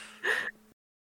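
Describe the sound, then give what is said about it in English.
A person yawns once, with a short breathy intake that swells and then trails off into quiet. No talking. “if you didn't yawn at least once after two other people did it, then...”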